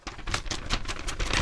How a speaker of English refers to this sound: Get these paper rattling out of the way.